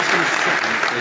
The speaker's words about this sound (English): To our panelists, thank you very much for your insight and your willingness to play well with others. We appreciate your context, your insight. A round of applause.